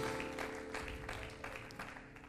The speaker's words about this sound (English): Clap your hands to the Lord if you love your church. Amen.